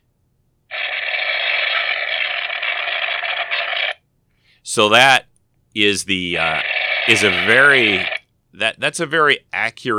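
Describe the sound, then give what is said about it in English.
A toy laser pistol fires one sustained, crackling burst of buzzy, static-like energy noise for about three seconds, steady and fairly loud, then cuts off before a man starts talking. “It had a like almost crackling energy kind of a noise that the the little laser pistols that they had on the show did, and it would shoot out a beam”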